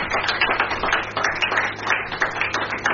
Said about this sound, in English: What an epileptic hand clap.